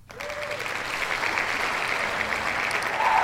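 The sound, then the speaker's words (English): A cheering sound effect: a crowd cheering and applauding, a dense steady wash of clapping and voices that starts abruptly and holds at a fairly loud, even level for about three seconds, with a few brief whistle-like tones. “Let me find my little cheer.”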